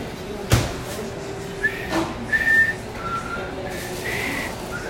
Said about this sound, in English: Wow, I can't whistle, like, at all. Sucking in the air, blowing.